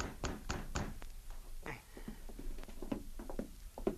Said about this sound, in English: Carl Dykes was in his cabin alone when he heard a knock on the door.